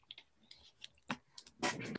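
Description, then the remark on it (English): Someone takes a quick sip of water. Light clicks and handling noises lead up to it, followed by a short breathy slurp and swallow, with no talking. “Allow me to drink a little sip of water.”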